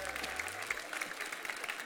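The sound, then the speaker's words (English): A church audience at Southern Hills applauds, dense steady clapping from many hands at moderate volume, with no talking over it. “Give them a round of applause. They were great.”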